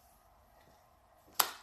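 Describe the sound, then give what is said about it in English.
A sudden bright pop like a confetti cannon sound effect bursts out after a quiet stretch, followed by a brief hissing, whooshing tail that quickly fades. “That's where that confetti button.”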